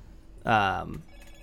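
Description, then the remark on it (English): A phone ringtone sounds once in a short, bright, tonal burst lasting about half a second. It stands out clearly over a quiet background murmur. “That's an adorable ringtone, but I thought I turned it the fuck off.”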